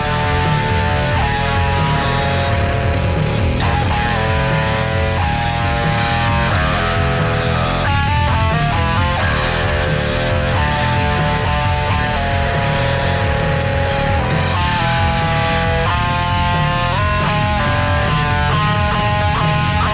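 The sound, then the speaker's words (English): Loud, heavily distorted rock music plays nonstop as an intro track, thick and saturated with a gritty buzzing guitar tone over pounding low end and no voices. “Heavy distortion.”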